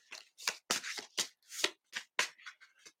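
Crisp riffling of a deck of cards being shuffled to draw a single card, in a quick series of about ten papery bursts with brief gaps between them, with no voices.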